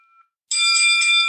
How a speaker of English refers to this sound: Yeah, your bell is going a bit crazy there.